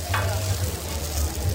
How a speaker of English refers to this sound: This is the sizzle of Dutch designer Caroline Niebling's Sausage of the Future, inspired by culinary tradition but steeped in sustainability.